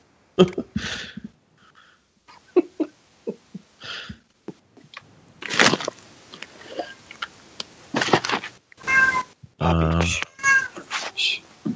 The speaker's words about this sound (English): Oh, shut that cat up.